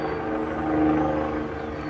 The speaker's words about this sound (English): Engine brake. How long are you going to use your jimmy brake there, buddy? He's going to slow down. He's probably doing 80 coming into a 45.